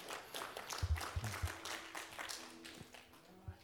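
A crowd applauds steadily for a few seconds, a dense patter of many hands clapping at once, fairly soft, with a faint low hum beneath.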